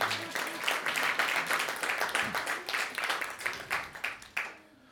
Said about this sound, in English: Yeah, do I get a round of applause for that?